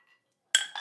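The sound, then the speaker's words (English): Drinking glasses clink together in a toast among a group of men, a bright ringing strike followed quickly by two more overlapping clinks, fairly loud, with no talking. “Let's hear them glasses clink, fellas.”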